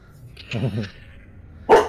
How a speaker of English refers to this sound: That is exactly what y'all hear in the distance. You start to hear barking. Ooh. Coming from several places around the area.